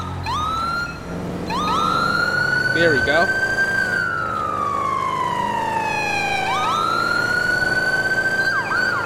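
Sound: police car siren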